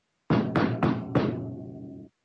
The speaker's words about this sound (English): I can literally just knock on the door.